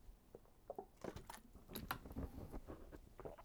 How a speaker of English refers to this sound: Sip of water.